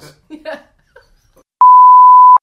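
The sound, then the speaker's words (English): A steady, loud pure-tone censor bleep, used to edit out a spoken name, holds for just under a second, following a brief stretch of quiet, indistinct talk. “Can we go right over that with a beep?”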